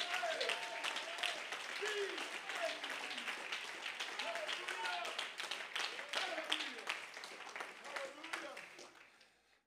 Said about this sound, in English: Can we Can we clap our hands to the Lord and give him praise?